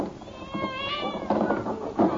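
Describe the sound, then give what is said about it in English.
Several cats meow, their cries overlapping in a drawn-out, wavering chorus with a couple of louder yowls toward the end. “Let's have a look at these tropical felines.”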